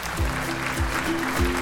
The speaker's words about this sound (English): Cue the applause.